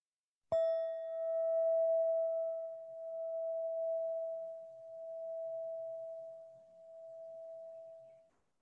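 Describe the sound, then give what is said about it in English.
A single meditation bell is struck once, and its clear, steady tone rings out alone for several seconds, wavering gently as it slowly fades away. “And when you're ready, close your eyes, I'll ring the bell, and we'll just listen.”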